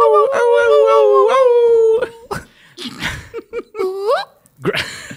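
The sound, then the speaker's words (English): A wolf howl rings out loud, one long wavering cry followed by short yelping bursts and a second, rising howl. “Is this the woof? A woof.”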